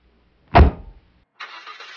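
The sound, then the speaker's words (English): A Lincoln car with tinted windows starting in snow: a heavy thump first, then after a short pause a steady whirring, rumbling engine crank. No one speaks. “Get in the car!”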